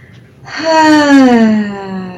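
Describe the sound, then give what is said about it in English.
A deep breath released as a long, voiced sighing exhale whose pitch slowly falls, fairly loud, after a faint breathy intake, by a woman holding heart-shaped selenite stones during a guided breathing exercise; no talking. “Let's take a deep breath like that, where you make a sound, actually.”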